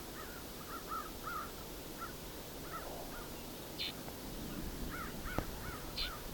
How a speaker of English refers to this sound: There's a flock of, I don't know, 70 or so crows nearby here too. To find they love this road as well.